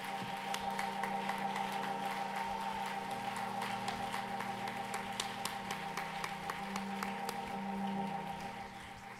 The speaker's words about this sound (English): And if you believe that prayer, I want you to clap your hands just one more time unto the Lord. Would you do it?